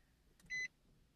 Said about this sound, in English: Oh, I think I just kind of started this car. Sorry for the extra beeps.